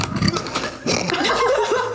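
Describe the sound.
A person imitates a burp with their voice: a short low croak, then a longer, rough, gurgling belch-like sound that wavers in pitch for over a second, fairly loud and with no talking.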